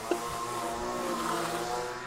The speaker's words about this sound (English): This is great. I was trying to have a clean guest appearance this time around without any interruptions and any stoppages, and some dickhead is mowing the bloody lawns. That's not a dick. He's paid to do it